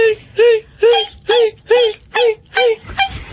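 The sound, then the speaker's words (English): A voice imitates the shrieking violin stabs from the shower scene in Hitchcock's Psycho: eight sharp, high-pitched, rising-and-falling squeals in a steady, rapid rhythm, fairly loud, with no talking between them. “did you know that in the original cut of Psycho, that Hitchcock did not want those high-pitched violin screams to accompany the shower scene?”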